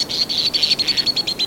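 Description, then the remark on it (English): High, shrill twittering of white-throated swift calls, a rapid run of about a dozen sharp pulses forming a steady trill, fairly loud and clear with no voices. “Consider the birds called white-throated swifts.”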